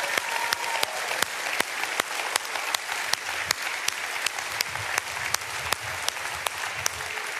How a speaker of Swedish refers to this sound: Give a big hand.